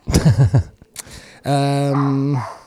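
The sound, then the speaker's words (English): A dog growls in a few rough, pulsing bursts, pauses, then lets out a longer, drawn-out bark-like howl with no one talking over it. “Come here. Fucking dog.”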